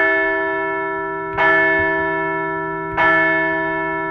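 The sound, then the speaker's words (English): A large bell is struck twice, about a second and a half apart. Each strike rings out loud and clear, and its deep, resonant tone sustains and hums between the strikes. The bell is rung to celebrate a Phillies baseball series win in South Florida. “So let's ring the bell for a series win in South Florida.”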